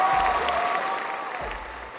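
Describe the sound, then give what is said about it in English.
A crowd gives a round of applause: dense, steady clapping that holds at an even, fairly loud level for about two seconds, with a low rumble swelling underneath twice. “Give this guy a round of applause, man.”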